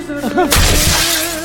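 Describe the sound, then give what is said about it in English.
A glass panel of a sliding double door in an aluminium frame smashes with a sudden loud crash, followed by a second of bright, scattering shatter noise. A brief voice-like tone comes just before the impact. “Smash one side. Oh, hit the aluminium vertical in the middle. We'll take the glass and the whole pinnelling frame out.”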